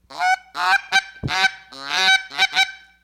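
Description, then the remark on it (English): A borrowed goose call is blown in a quick, uneven series of about six or seven loud, nasal honks, imitating geese honking to call them in, with no talking during the calls. “But there's calls that you can use for calling in geese.”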